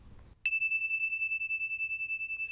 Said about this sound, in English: And to begin the meditation, I shall sound the bell. And the purpose of the bell is to act as a portal into the present moment.